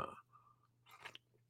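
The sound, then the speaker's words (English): A quick sip from a drink: a soft mouth noise, then a brief wet slurp and swallow, quiet over a low steady hum. “Take a little sip here, wet the pipes up.”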